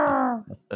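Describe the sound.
A person imitates a screeching owl: one strained, drawn-out vocal wail that slides downward in pitch, then a couple of short, rough bursts of voice.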